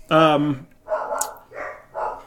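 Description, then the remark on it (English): A dog barks four times: one long, loud, strained bark followed by three shorter, softer barks at a steady rhythm, about half a second apart. “Can you hear my dog barking?”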